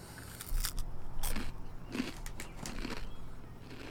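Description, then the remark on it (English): Crisp crunching as someone bites into a crunchy fig baked snack and chews, with several sharp crackly bursts in an irregular rhythm and no talking. “I'm going to do the audience a solid and not chew into the microphone.”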